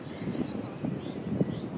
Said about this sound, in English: I'm struggling because it's really windy, and I try to speak to my phone so that I protect it from the wind.